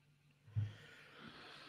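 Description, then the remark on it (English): A single quiet, stifled sneeze: a short sharp burst followed by a breathy, hissing exhale that trails off. No one speaks. “Bless you.”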